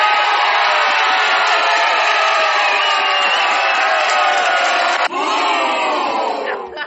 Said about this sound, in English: You're booing your own bar. That was your bar, though.